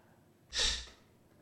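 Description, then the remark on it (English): A single short, forceful nasal snort made by a voice imitating a dismissive scoff, a breathy burst of about half a second standing alone against quiet background. “They snort at it. They blow their nose at it.”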